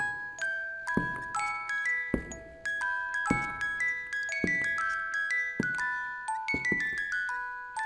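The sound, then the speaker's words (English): A small music box plays a slow, tinkling melody of bright plucked metal notes that ring and fade, with lower notes landing about once a second beneath the higher tune. “There is music from a small music box, the kind that my grandmother gave me.”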